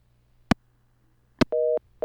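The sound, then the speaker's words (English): Two sharp clicks of a phone line disconnecting as musician Barry Melton hangs up during a call to the Jake Feinberg Show, followed by a steady two-tone telephone busy signal that starts beeping in even pulses over a low line hum. “He got so excited, I think he hung up his phone.”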